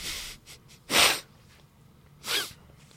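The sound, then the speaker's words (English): A couple of sharp, loud sneezes burst out close to the microphone, roughly a second apart, with a fainter sniffly breath at the start and quiet pauses between them. “It's a character I'm working on called Guy Who's Never Sneezed Before.”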